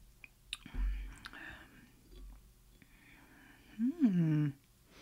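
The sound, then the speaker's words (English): A quiet sip from a drink: soft clicks and a low thump of a cup being handled, followed by a brief voiced, satisfied exhale near the end. “Let me just take a sip first.”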